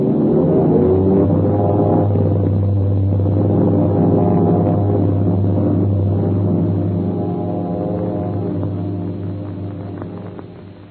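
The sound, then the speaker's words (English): The engines of four huge airliners roar together as an international air race starts across the field of Shanghai, a loud, steady drone with a deep hum, holding for most of the time and then slowly fading toward the end. No one speaks. “With a thundering bellow, four huge, slick airliners slip across the field of Shanghai.”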